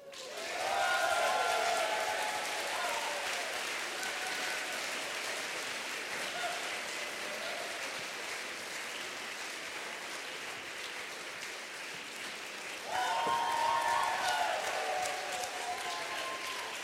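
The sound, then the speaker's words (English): Sustained audience applause at a poetry reading, welcoming the poet who opens the second half: a dense crackle of many hands clapping that holds steady for the whole stretch, swelling louder again toward the end, with a few voices faintly mixed in. “And our next poet, big round of applause for the poet who's going to be starting our second half,”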